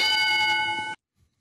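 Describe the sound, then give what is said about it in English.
A single bright bell ding, rung on a radio program to mark a cliche, rings out clearly on its own, its shimmering tone holding steady for about a second before cutting off abruptly into silence. “And for those who are new to the show, we always ring a bell when a cliche is invoked.”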